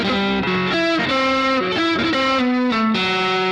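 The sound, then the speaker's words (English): A distorted electric guitar plays a quick lick on the G and D strings, notes gliding and snapping between pitches through slides and pull-offs, with a thick, sustained overdriven tone and no talking. “Sliding and pull-offs and hammer-on here take care of the rest.”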